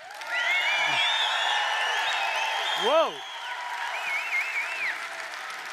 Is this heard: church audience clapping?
yes